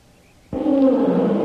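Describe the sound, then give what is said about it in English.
After a brief hush, a tiger's roar bursts in suddenly and loudly, a deep, rumbling growl that holds steady until the end. “Say, did you hear that? Tiger.”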